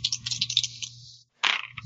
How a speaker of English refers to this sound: All right, let me roll some dice.